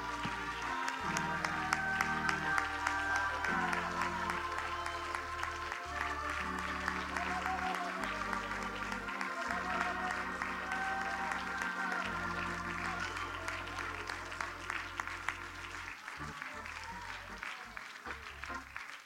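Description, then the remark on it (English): A church audience claps their hands steadily in praise to the Lord for the whole stretch, the dense clapping blending with loud live church music, bass and organ-like tones, with some voices raised in the crowd. “If you believe that, can you place your Bibles, your tablets, your smartphones down, and once again, clap your hands, lift up your voice, make a joyful noise unto the Lord.”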